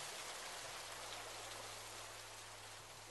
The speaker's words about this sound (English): When the rain finally stopped, the earth, which had been beaten with a trillion hammering raindrops, dried, flat and immaculate.